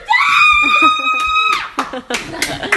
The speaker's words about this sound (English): Yeah, he threw a spider on me, and I was freaking crying. Out. I was screaming, and I started crying.